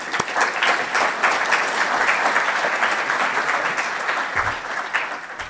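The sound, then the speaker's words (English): An audience at an Auckland Conversations event claps as Auckland Mayor Phil Goff is introduced, steadily for several seconds, a dense, even wash of many hands with no voices, the sound staying loud throughout and easing only slightly at the end. “A round of applause.”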